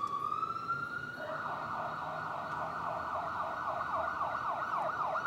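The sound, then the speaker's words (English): An approaching ambulance siren sounds loud, starting as a steady high tone and then breaking into a rapid, repeating warble, with low traffic rumble underneath. “Try and hold on. There's an ambulance coming.”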